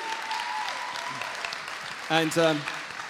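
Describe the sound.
A crowd claps in a steady, dense round of applause for several seconds for a woman coming up after being baptized today, with a loud voiced whoop rising above the clapping near the end.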